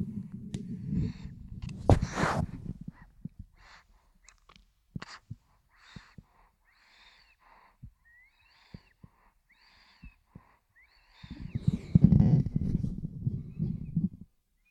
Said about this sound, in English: You can hear him snoring, right? Breathing. I'm going to put the mic on his little face.